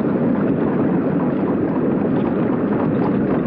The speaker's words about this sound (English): Such a noise won't hurt you, Felipe. It's just the sound of the water. So my sister tells me, senor, but still I am afraid.